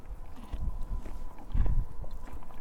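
A palomino horse named Ponky munches on feed outdoors in snow and mud beside a highway, with soft, irregular low crunches and thumps over a steady background hum and no one talking.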